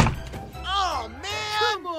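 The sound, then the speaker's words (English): A heavy wooden thunk as a door is dropped down onto thieves' heads, followed by two drawn-out, wavering cries from voices, like people yelping in pain and alarm. “So great was his shaking that he lost his grip on the door and dropped it right down onto the thieves' heads.”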